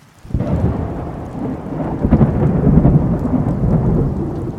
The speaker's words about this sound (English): Thunderclap.